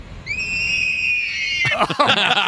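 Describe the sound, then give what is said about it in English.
A voice imitates a car's driver window screaming as it is rolled down: a loud, high, steady shriek held for over a second, then breaking into rough, choppy squeals until it cuts off. “Customer states, whenever I roll the driver window down, it sounds like somebody screaming.”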